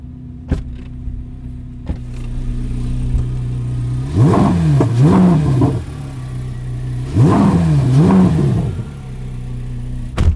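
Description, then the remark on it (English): A sports car engine, mounted behind the driver, idles with a steady low hum after warming up, then the driver blips the throttle twice in quick succession, the pitch rising and falling each time before settling back to idle. Loud, no voices. “But when it idles down and warms up a little bit, I will goose the throttle.”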